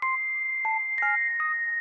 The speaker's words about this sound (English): The detective is packing away the last of the old case files when suddenly, a ring on the phone. Who could it be?